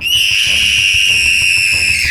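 A shrill, piercing scream holds one steady high pitch for about two seconds, loud, over a low rumbling background.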